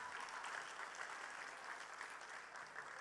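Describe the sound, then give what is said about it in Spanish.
A church audience applauds a man steadily, a dense wash of many hands clapping at an even loudness from start to finish, with no voices standing out. “A un varón, venga, dele un aplauso para que él.”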